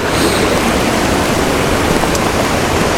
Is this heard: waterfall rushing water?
yes